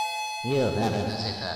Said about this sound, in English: There goes the door alarm. I better go and answer.